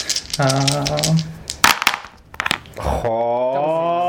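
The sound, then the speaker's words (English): A quick burst of sharp clicks and clatters as four dice tumble across a table, between stretches of voiced, humming talk. “So that's going to be 4 dice.”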